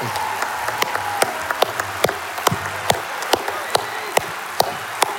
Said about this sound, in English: So come on, let's give her a big round of applause.